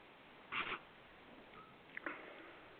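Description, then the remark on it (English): Two short, breathy sniffs separated by about a second and a half of quiet, as someone smells a 9% alcohol beer with a citrusy smell. “Any sniff? Smells kind of citrusy.”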